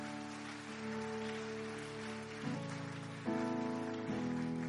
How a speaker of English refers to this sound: Now, increase that clap offering because some people didn't join you.